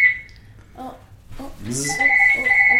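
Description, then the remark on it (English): A phone rings with a steady electronic tone that cuts out briefly and then resumes, while people talk over it; the incoming call goes unanswered during a live recording. “Yeah, to whoever's calling, this is why we didn't answer the phone.”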